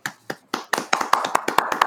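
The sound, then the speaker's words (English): A few sharp hand claps, about nine in a row, falling into a quick steady rhythm like a brief round of applause from one or two people, with no talking. “let's just take some time to applaud that, like literally applaud.”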